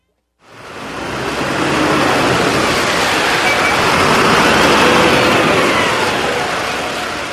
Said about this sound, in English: I jump on an early morning bus leaving the Jerusalem bus station bound for Hebron.